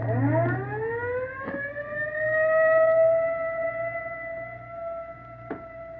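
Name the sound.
ambulance siren wailing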